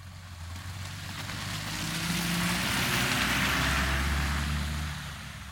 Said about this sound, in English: sometimes we had to wait our turn as a truck or SUV crossed from the opposite riverbank